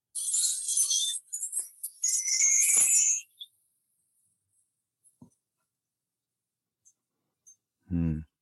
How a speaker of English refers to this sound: So this is a tree chime thing. It's all made out of keys getting smaller and larger. Made for me.